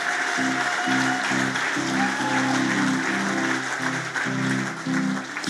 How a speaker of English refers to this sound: Last clap. Just one more.